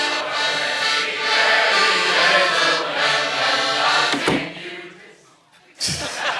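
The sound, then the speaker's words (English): A group of carol singers sings loudly and steadily at the front door for several seconds, then two sharp thuds like a door banging break in, with a brief lull between them. “These carol singers are too legit to quit.”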